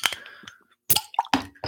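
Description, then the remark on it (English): A bottle of Belgian-style pumpkin ale is opened and foams over onto a keyboard, with a short pop followed by bursts of hissing fizz and wet splashing spill sounds, fairly loud, with no one talking. “I just got beer on my keyboard.”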